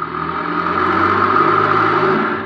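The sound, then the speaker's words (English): A car engine hums steadily as a car comes out of an alley, a low droning rumble that swells slightly and then eases off toward the end, with no voices. “Wait, there's a car coming out of the alley.”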